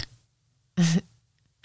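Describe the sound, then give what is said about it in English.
A person imitates a snore with one short, loud, buzzy nasal snort lasting about a quarter second, set between near silence and a faint sound at the very end. “sometimes the boys would go, oh, you had a really cute little snore last night. And I said, oh, what did it sound like?”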